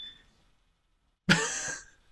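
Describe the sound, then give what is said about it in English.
A smoke alarm gives a loud, shrill electronic beep lasting about half a second, after a brief quieter tone at the start and a stretch of near silence. No one speaks. “Well, our smoke alarms work.”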